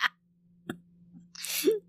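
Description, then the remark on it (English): A woman coughs into a microphone: after a faint breath and a small click, one harsh, raspy cough bursts out loudly, with a low hum running underneath throughout. “She's coughing all over the mic now.”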